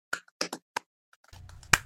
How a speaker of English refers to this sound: Golf clap. Standing ovation. Standing ovation.